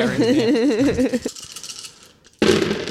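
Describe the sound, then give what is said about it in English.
A wavering, sing-song voice gives way to a scattered rattle of dice tumbling and clattering across a surface as all of a player's dice are rolled in a tabletop game, fading briefly before another burst of clatter. “So you just use all your dice then.”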